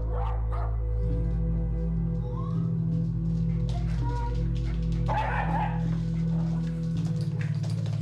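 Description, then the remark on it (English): Several of the 13 dogs that Gabrielle Kleem lives with in Holland bark and yip in scattered, overlapping bursts over a steady low hum, with a few whimpering sounds mixed in. “Gabrielle Kleem now lives alone in Holland with her 13 dogs.”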